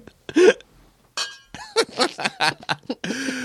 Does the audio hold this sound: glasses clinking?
yes